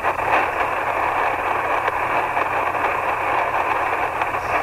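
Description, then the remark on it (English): Steady, dense hiss and crackle of shortwave radio static on the 80-meter band, caused by storms, fills the whole stretch at a constant loud level, with faint low hum beneath and no voices or signals breaking through. “There's as much static on 80. So we've got a lot of storms.”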